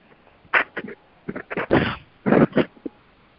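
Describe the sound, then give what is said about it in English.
A run of sharp sneezes, several explosive bursts in quick succession with brief gaps between them, fairly loud against a quiet background. “God bless you.”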